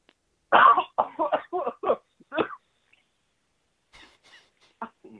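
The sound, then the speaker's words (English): A loud fit of coughing, about seven or eight harsh bursts in quick succession, then a pause before a few softer, quieter coughs trail off. “I can't tell if you're coughing just because you needed to cough or if you actually stunned.”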